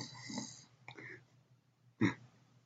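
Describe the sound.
A voice imitates a person snoring while asleep: a couple of raspy, breathy inhale-exhale snores followed by a short, louder snort, fairly quiet, with no talking.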